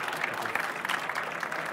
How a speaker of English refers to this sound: First of all, a round of applause. That was a great presentation.